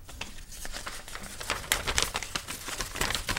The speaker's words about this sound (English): Oh, you can't rumple one piece of paper to make it sound like 10.